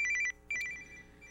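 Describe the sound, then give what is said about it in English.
A telephone rings with a bright, trilling electronic warble in two quick bursts separated by a short pause, clear with no voices over it. “Oh, God, who's that again? Is it's that her again. Your phone's hooked back up.”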